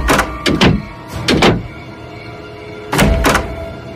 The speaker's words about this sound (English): they locked the doors and windows tight. This was the case every night years now.